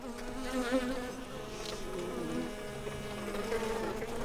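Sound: bees buzzing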